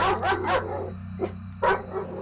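A dog named Marbles barks in a backyard several times in quick succession, pauses, then lets out two more sharp barks, over a steady low background hum.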